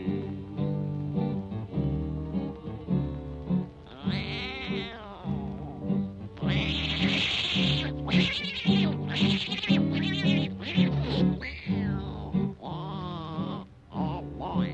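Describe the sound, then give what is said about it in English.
Tomcats fighting at night: loud, drawn-out yowls and meows rise and waver, overlapping in a continuous, harsh caterwauling that swells and breaks off in short bursts near the end. “Now on that very same night, that old tomcat started a fight. And this is the way it all did sound to me.”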